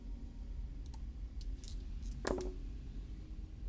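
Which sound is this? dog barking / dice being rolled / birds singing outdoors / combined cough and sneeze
dice being rolled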